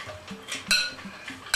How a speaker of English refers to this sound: Take it out, break it in large pieces. We like large pieces. Place this in the mixture. And then stir it so that all the matzah is coated.